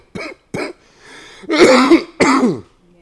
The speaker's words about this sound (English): You didn't hear me coughing a couple minutes ago.